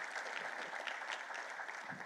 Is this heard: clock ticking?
no